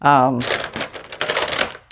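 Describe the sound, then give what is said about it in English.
Fabric scissors marked Ginger, Italy, from a Goodwill grab bag, snip in a quick run of crisp, papery cuts, with a sharp final snip at the end; a brief voiced sound comes just before the cutting starts. “They sound like they're good scissors.”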